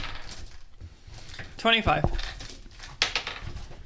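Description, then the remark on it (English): A short clatter of dice being rolled for a perception check in a tabletop role-playing game, a few quick hard clicks bunched together, with people talking around it. “I need to remember to say this is the dice.”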